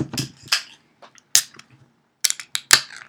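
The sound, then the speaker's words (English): An American lager, about 4.6%, being opened: a series of sharp cracks and metallic snaps, some quick and clustered, with brief hissy tails and short pauses between them. “Well, let's open it up.”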